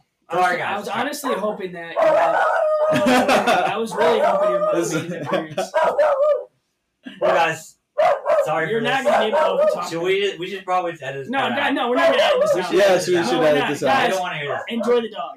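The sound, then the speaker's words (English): Several dogs bark and yip in loud, nearly continuous bursts, with whiny, howling tones mixed in and a brief lull partway through. “The puppers are making an appearance again, baby. Shout out the dogs. They're a lot more vocal this time.”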